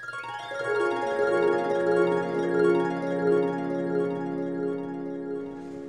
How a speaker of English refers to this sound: Hear my story. It all started with a harp glissando.